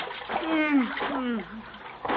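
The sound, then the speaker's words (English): Continuous water splashing and sloshing as someone heaves out of water, with a voice making wordless straining sounds over the churning, ending in a final splash. “You fell at the top of Rainwater. Oh, my goodness. No wonder I'm all wet. Help me out of here.”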